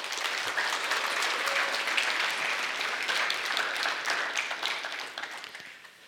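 An audience applauds steadily, a dense crowd of many hands clapping at a fairly loud, even level for several seconds before it begins to fade out at the end.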